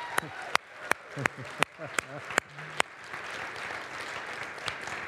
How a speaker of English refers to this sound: And also the two people who clapped for you this morning, they do too as well.